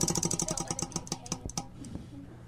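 A prize wheel called the Wheel of Kink, held up to a microphone, spins with a rapid train of sharp clicks that gradually slow and space out before stopping after about a second and a half, followed by a faint voice.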